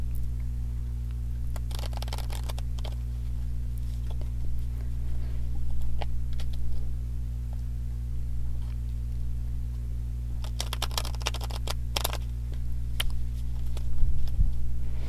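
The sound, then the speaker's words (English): Tarot cards being shuffled in short, papery flurries of rapid flicks, two main bursts with scattered taps between, fairly quiet over a steady low electrical hum; no one speaks. “I don't think I was praying silently that time, but thank you for hanging in there while I shuffle.”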